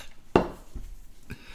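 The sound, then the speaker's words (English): A glass is set down hard on a table with a sharp, ringing clack, followed by two softer, duller knocks about half a second apart. No one speaks. “As I angrily put my glass down.”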